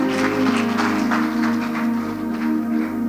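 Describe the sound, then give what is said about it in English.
An audience claps together to give God praise, in steady bursts over a sustained low keyboard or organ drone, the applause loud and continuous for a few seconds with no voices. “Clap and give God some praise.”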